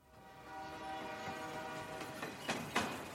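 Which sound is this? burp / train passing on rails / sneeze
train passing on rails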